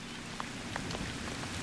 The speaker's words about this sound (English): From your home above, you send rain on the hills and water the earth.